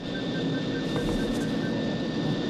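airplane engine in flight

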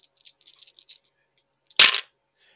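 dice being rolled

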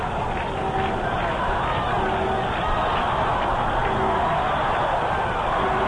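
baseball stadium crowd

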